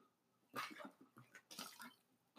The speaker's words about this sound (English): Sorry, I had to take a little drink of water. I'm losing my voice.